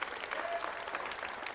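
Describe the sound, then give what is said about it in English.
About four or five hand claps rise from an audience, sparse and uneven rather than full applause, fairly quiet throughout the brief moment. “Boy, I only got about 4 or 5 hand claps on that one.”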